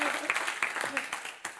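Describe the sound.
An audience applauds in a steady, dense wash of clapping with scattered sharper claps, fairly close and moderately loud, with faint voices mixed into the crowd noise.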